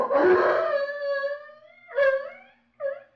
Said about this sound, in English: The dog barking. He'll get the rest of them going. The Japanese will know there are strangers in this darkened village.